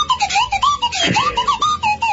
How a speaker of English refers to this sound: Yeah, that's not beautiful. A punishment. I hadn't heard the slide whistle all day. I kind of hoped that he'd lost it.